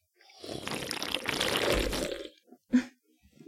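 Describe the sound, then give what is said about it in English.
A loud, wet slurp into a microphone, a gurgling rush of liquid sucked through the mouth for about two seconds, followed by a short sharp smack and a few quieter wet clicks. “It's called a slurp.”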